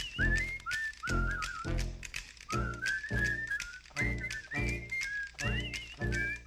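A person whistles a lively, bouncing tune, the pitch sliding and warbling between notes, backed by a steady rhythmic accompaniment pulsing underneath in regular beats.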